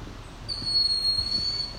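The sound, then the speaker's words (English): A bird's alarm call in a forest: a steady, high-pitched whistling note begins about half a second in and holds unbroken to the end, over a low background rumble, with no voices. “No, it is a bird or something, I guess. Making alarm call.”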